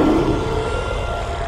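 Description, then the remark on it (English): A loud, sustained monstrous roar, deep and rumbling with a harsh growling texture, holding steady for about a second and a half with no speech. “There's a monster in the basement.”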